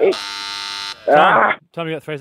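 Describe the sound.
A game show buzzer blares once as a player buzzes in during a song-guessing quiz, a loud, flat, steady electronic drone lasting almost a second, followed by people talking.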